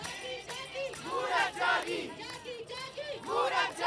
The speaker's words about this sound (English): As they gather, they clap to music. They chant, "Women have woken up."